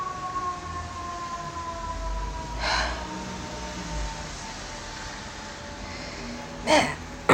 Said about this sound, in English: I love the sirens in this city. They're so cool sounding. I keep meaning to sample them, but by the time I get my fucking phone recording, they're gone, because sirens indicate an emergency.